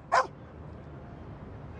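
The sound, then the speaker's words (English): A dog lets out one short, sharp, loud bark near the start, followed by a low steady background hush with no further barking. “While Bailey is one hard-working dog, there are thousands of dogs in the city that people love.”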